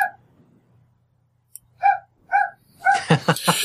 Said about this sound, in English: I've got dogs barking in the background. Okay. I have one scratching at the door of the pub as well. Hmm. That's not a euphemism. But, those are actually dogs barking.